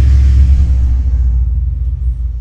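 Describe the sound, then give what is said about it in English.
A heavy truck rumbles past, its deep, loud engine drone filling the low end before gradually fading as it moves away. No one speaks. “And a fucking truck's a one upper.”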